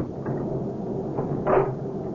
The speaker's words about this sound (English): Honey, will you get the door closed and locked?